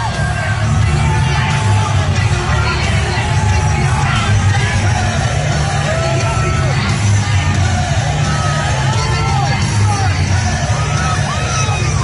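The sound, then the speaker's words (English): A large arena crowd at a UFC event roars continuously as Donald Trump and Dana White walk in to watch the fights, a dense wall of cheering, yelling and whooping voices that stays loud and steady throughout, with individual shouts rising out of the din. “Listen to the crowd respond.”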